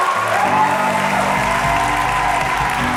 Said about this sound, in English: Go ahead, you're clapping, do it right.